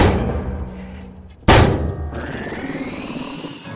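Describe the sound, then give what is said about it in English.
A heavy door slams shut once, a sudden loud thud partway through, its boom fading into a low, reverberant rumble against a dull background hum. “Seal the door.”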